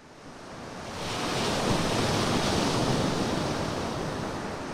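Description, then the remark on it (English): Ocean surf washes in with a broad, steady roar that swells over the first second and holds, mixed with gusty wind rumbling across the microphone on an open beach, recorded while walking along the shore on a beautiful day. “we're walking here at the interface between the land and ocean, Molly, better known as the beach”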